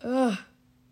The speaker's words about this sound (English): Sorry, I yawned.